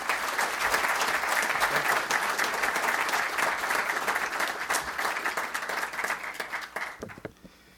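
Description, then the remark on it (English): Sustained applause from a large audience at CSIS in Washington welcoming Iraqi Foreign Minister Zebari, a dense steady wash of many hands clapping at full volume for about seven seconds before quickly tapering off into a few scattered claps. “And so I would ask you, with your applause, would you please welcome this remarkable statesman, Foreign Minister Zebari.”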